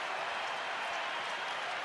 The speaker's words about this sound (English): And the crowd that's been quiet all half has something to cheer about.